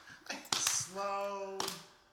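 A few sharp, separate hand claps land at an unhurried, uneven pace, with a steady, tonal voice-like sound held between the later claps.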